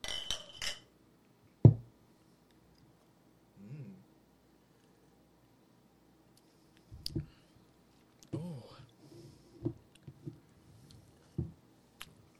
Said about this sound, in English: All right. Should we try it? Yeah, let's cheers.